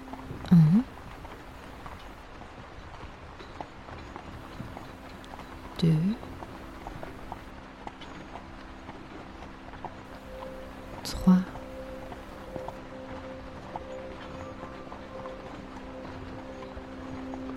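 Muffled horse hooves plod steadily over snow during a horse-drawn carriage ride along a snow-covered path, beneath a constant low rumble of the moving carriage, with three brief louder knocks spaced several seconds apart.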